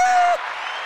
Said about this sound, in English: Let's get a hand clap.